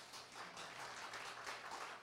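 A crowd applauds steadily for about two seconds, a dense, even patter of many hands clapping at once with no voices rising above it.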